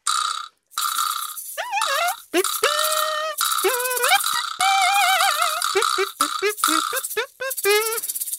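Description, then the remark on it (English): Kazoo and chime band music, an original piece written by a band member: loud, buzzy kazoo lines play a bouncy melody of wobbling, sliding notes, with short rattly accents between phrases. It runs continuously with no talking. “So I actually have a kazoo and chime band that I'm in, and I write all the music for it.”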